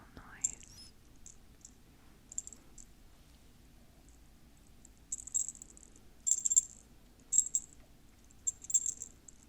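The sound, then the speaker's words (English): A tiny bell inside a small ornament jingles in short, bright, high-pitched tinkles, a few sparse shakes at first, then louder clustered bursts toward the end, over a faint low rustle. “So now, these might be my favorite, because they have a cute little bell inside.”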